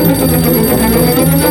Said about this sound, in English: Sir, the telephone.